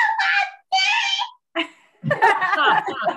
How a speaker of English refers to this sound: Yeah, what does my scream sound like? What does my yell sound like?